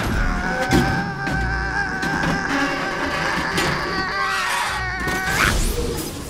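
The hatch door of a time machine, a 2145 model, creaks open in one long, drawn-out groaning squeal, its pitch wavering and bending for about six seconds, fairly loud with a few soft thumps and no voices.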